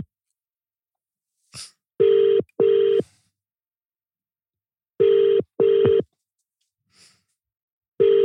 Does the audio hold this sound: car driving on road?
no